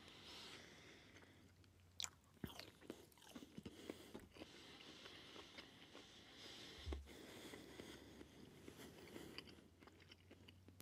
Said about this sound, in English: Okay, so those aren't terribly exotic, but they're good. And they crunch and munch the way that you would hope any mushroom would.